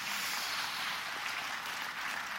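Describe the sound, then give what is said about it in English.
A church audience clapping during a sermon, applauding the risen Lord, a dense, steady wash of applause that holds at an even level throughout, with no voices heard over it. “You can clap for that if you want.”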